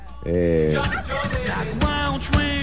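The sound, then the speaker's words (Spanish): A turkey gobbles loudly: a rapid, warbling burst of throaty calls that repeats several times over a couple of seconds, with a steady low hum underneath. “Buscando al pavo.”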